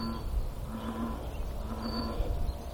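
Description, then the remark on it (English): A bullfrog calls twice, each a low, droning, drawn-out croak, heard over a steady rumble of wind with no talking. “That's the bullfrog noise.”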